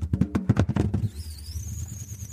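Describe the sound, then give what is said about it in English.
A 5p coin spinning on its edge inside a balloon, skating round the inside: a rapid, buzzing rattle of pulses for about a second, then a thin, high-pitched whine that wavers and slowly rises while a low hum continues. “So, and again, the balloon, the coin is whizzing round on the inside, on its edge, skating round inside.”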